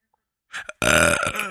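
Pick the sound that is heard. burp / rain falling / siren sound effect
burp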